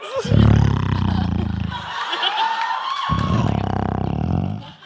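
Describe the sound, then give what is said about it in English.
A person's voice imitates a lion, producing two loud, deep, raspy roars into a microphone, separated by a short gap, each rumbling for a second or two. “Do you want to hear a lion? Yeah, I would love to hear a lion impression.”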